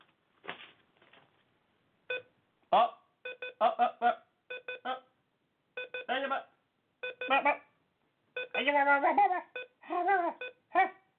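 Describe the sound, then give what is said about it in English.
A computer beeps over and over in short, irregular, loud electronic bursts, with some babbling vocal sounds mixed in toward the end. “Second I touch that computer, it's going to beep again.”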